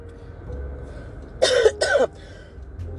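Two quick, harsh coughs in close succession, loud, with a raspy throat-clearing quality and no talking.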